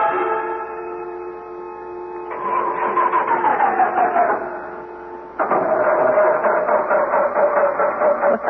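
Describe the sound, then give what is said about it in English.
The engine of an economy tour bus on a day excursion to Pompeii and Herculaneum drones with a steady whine, then breaks into rough, rattling bursts as its pitch sags downward, briefly quiets, and surges back loud with a lower, straining hum as the bus breaks down. “Well, when you book an economy tour... You get an economy bus.”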